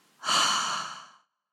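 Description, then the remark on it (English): A loud rush of breath through the mouth, a double inhale and exhale in a breathing exercise, lasts about a second and then fades out, with no talking. “Tense and hold, and double exhale. Double inhale.”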